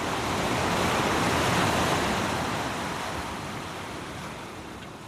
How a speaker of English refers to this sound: you know, because we hear this big roaring and the wind, just the wind and the rain, and you can hear the sea. It sounds as if it's going to come in right in the front door.